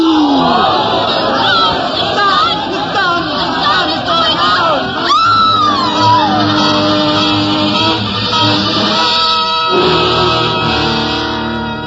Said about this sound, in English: The crowd went mad with fear.